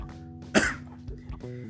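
A single sharp cough, caused by pie crust in the throat, bursts out over a low steady background hum, followed by quieter breathy throat sounds.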